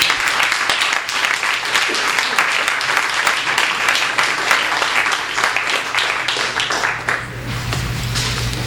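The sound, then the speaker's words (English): An audience applauds steadily for Gideon Lewis-Kraus, a dense, sustained wash of many hands clapping at a fairly loud, even level, with no voices standing out above it. “Please just keep applauding for Gideon Lewis-Kraus.”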